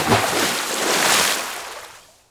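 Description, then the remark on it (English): A big, rushing splash of water from an entire bucket dumped off a fourth-story rooftop, a broad hissing wash that swells over about a second and then drains away and fades out, with no voices. “I dumped the entire bucket of water off the fourth story floor.”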